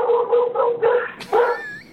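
A dog lets out a run of short, whiny yelps, then a sharper bark, and trails off in a thin rising whimper, fairly close and clear with no talking.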